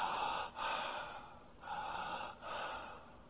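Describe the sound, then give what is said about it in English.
A person imitates the rapid, labored breathing of someone in the last 24 to 48 hours of life: four quick, harsh gasping breaths in and out, with short dips between them and no talking. “What did they do in the last 24 to 48 hours? They started to breathe like this.”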